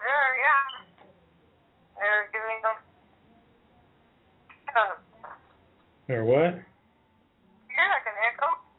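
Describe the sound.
A thin, tinny voice comes through a poor telephone line in short bursts with gaps between, hollow and echoing as if each phrase doubles back on itself.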